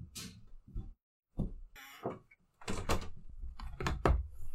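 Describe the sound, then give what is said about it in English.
A heavy door is handled and moved as it is delivered to a house, with a series of loud wooden thuds, knocks and scraping bursts coming in uneven clusters, broken by a brief pause of quiet. “Austin's getting a door delivered to his house”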